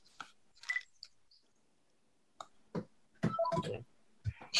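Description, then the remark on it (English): A landline telephone rings in short, uneven electronic bursts with brief quiet gaps between them, fairly loud, with no one speaking. “You know what? I'm going to take this phone off the hook.”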